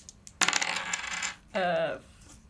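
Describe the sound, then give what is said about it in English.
Dice are rolled during a tabletop role-playing game to resolve a pistol-whip attack, landing a 5. They rattle and clatter in a quick burst of hard little clicks, followed by a short ringing, slightly falling tone as they spin and settle. No one speaks. “Cool, roll to mix it up.”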